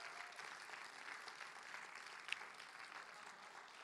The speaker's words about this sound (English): And once again, just can we have a massive round of applause for all the leaders that came along to History Makers?